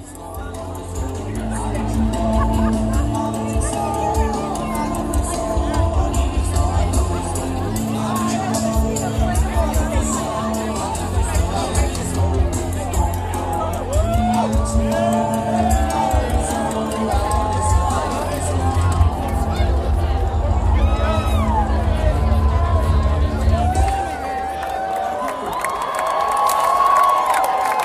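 A huge crowd at a live concert roars and cheers continuously over steady low music, with shouts and whoops rising throughout before the music shifts near the end.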